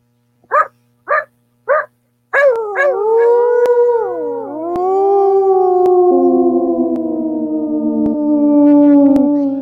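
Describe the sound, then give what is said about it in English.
A voice imitates a basset hound: three short, sharp yelps, then one long, loud, wavering howl that slowly falls in pitch and drags on for several seconds, alone. “God, my basset hound is a wolf.”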